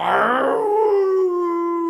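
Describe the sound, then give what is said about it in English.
A black dog gives a single long, mournful howl, starting rough and wavering before settling into a steady, sustained tone. It is loud, with no talking. “The black dog was coming very, very close, plainly very unhappy about Peter's being there.”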